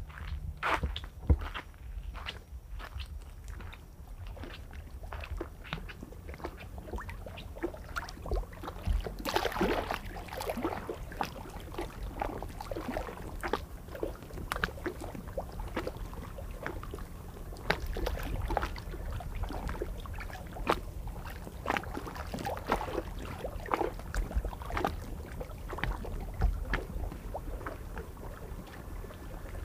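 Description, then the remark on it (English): Water laps against a dock, a jetty of earth, stone and cement, in irregular, soft splashes and slaps, over a steady low rumble of wind, near midnight on a warm, humid, cloudless night. No one speaks. “Let's go listen to the water for a sec.”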